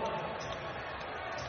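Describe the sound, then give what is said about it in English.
An arena crowd at an NBA game between the Utah Jazz and Portland boos after Terry Stotts calls a timeout, a dense, steady wash of many voices holding at a fairly even loudness throughout the short stretch. “The crowd is booing.”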